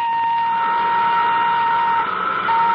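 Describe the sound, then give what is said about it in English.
Nuclear jet engine number one of the XIP craft is cut in and roars steadily, a sustained high-pitched whine layered over a broad rushing drone, holding an even loudness throughout with only a slight wavering near the end. “Cut in nuclear jet number one.”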